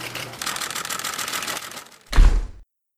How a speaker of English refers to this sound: She certainly enjoys slamming doors.